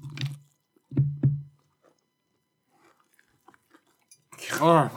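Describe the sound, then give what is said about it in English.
Crunchy chewing of a single crispy chicken breast piece: three loud crisp bites early on, then soft wet mouth clicks, ending with a short voiced murmur. “Which one is that? It's crispy chicken.”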